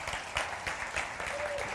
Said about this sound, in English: I want to welcome you guys again, and I want to pause and celebrate that God has filled our church with life and children. Amen. Isn't that amazing? Today, 23-some families. You can clap for that.